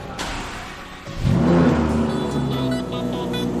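A black Lamborghini Murcielago engine fires up after a second of low hum, then roars loudly and steadily with a deep, rising growl, with no one speaking.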